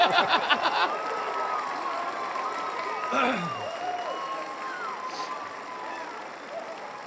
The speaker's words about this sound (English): Gonna give him a big old cheers. Woo! Clap your hand, you fucking nobody!